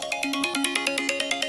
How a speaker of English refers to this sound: Sorry, my phone just rang.